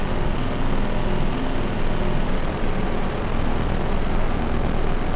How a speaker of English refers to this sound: I've got the end of splice gate clocking the Databender. Other than that, that's it. I've got the gene size kind of around 12 o'clock, and I'm just kind of messing with the slide control, finding nice little snippets of this drone.